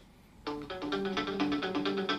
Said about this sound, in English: Oh, shit. It sounds like a … song. It does a bit. But it's probably not, is it? Is it? No. No. But it is quite …-esque.